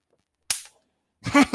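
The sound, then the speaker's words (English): A bug zapper racket zaps a fly: two sharp, loud electric snaps about a second apart, the second a longer crackling burst, with silence around them and no talking. “If you listen to my last episode, I'm probably going to get my bug zapper racket out and zap the crap out of this guy.”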